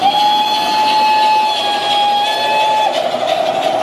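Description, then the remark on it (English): A vintage steam train's whistle blows one long, steady, loud note for nearly three seconds, then cuts off, over a constant rushing hiss of steam and engine noise. “And so they spent the rest of Sunday afternoon playing vintage trains”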